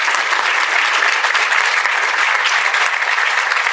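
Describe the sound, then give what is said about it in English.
A live audience claps steadily, dense and continuous applause filling the room at a fairly loud level with no voices rising above it, applauding a female speaker. “You can give her a round of applause.”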